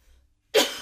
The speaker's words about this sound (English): Also, we're not editing, so no, that little editing. Cough is just for you.